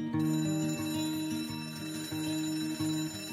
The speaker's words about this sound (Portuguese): Então, acordar com um alarme, com um acordar repentino, não é a melhor maneira de conduzir sua vida?